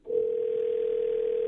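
A telephone line ringing out as New Country 103.1 radio hosts call a listener: one steady, unbroken electronic tone at a low-mid pitch starts almost at once and holds at even loudness to the end, with no voices.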